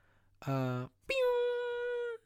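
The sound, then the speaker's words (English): A cat meow sampled in the instrumental of a song's production: a short, lower cry followed by a longer, higher, sustained meow, both loud, with no talking. “You hear that little meow in the production right there in the instrumental?”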